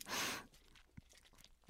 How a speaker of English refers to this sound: But I will say I am fully dressed in a Bob Mackie gown right now. And I'm even wearing, listen, you can hear my jewelry. Listen to all the jewelry. This is definitely not my keys. This is jewelry.